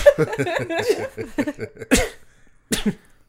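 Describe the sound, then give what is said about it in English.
A voice makes sputtering, vocalized sounds, then two sharp sneezes burst out loud, spaced under a second apart, with a short silence between them; a man sneezing rapidly from allergies set off by a fragrance mixture. “So he's just like rapidly sneezing and is finally now registering that there's people here.”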